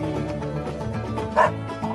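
Dog barks ring out over a steady musical backing, with one sharp, loud bark standing out near the end above the rest.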